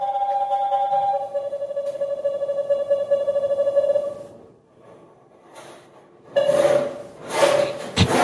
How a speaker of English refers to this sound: So he starts sawing, and if he goes off course, it starts to go... That is the most annoying sound in the world.